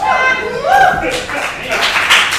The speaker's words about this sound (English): Oh, I didn't mean it. You can keep clapping.